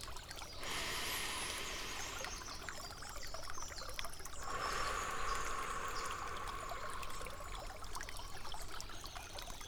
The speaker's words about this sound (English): As you just close your eyes and listen to the sound of the water flowing by you.